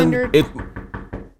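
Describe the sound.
A quick series of about four evenly spaced, moderately loud knocks on a door on Halloween, following a brief stretch of someone talking.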